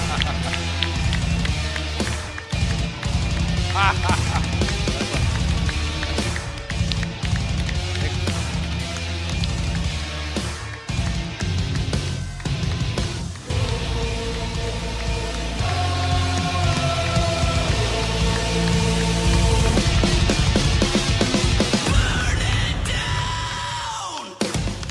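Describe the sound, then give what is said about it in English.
A loud, steady roar of audience applause and cheering fills the scene, with scattered yells and whoops rising over the crowd and a thumping musical beat running underneath, greeting WWE wrestler Seth Rollins as a guest on ENN while he does his dance moves. “As he soaks in the applause, gives us his Seth freaking dance moves.”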